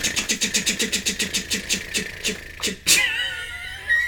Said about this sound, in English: Your cat just fucking jumped out of his skin. Well, there's a big wheel spinning. He's all freaked out by it. He just was like, oh fuck, what's happening?